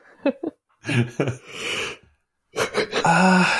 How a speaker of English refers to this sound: Who's yawning? Oh, sorry, that's sorry, me.